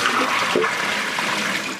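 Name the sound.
running water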